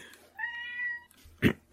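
A cat lets out a single drawn-out meow, clear, followed by a couple of short, sharp knocks or shuffling sounds, as the cat is being let in.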